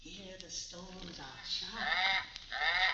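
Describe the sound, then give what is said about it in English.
A cormorant lets out harsh, loud squawks, two strained calls in quick succession near the end, following a stretch of low voices and rustling. “many of the natives hereabouts are afraid of the bird”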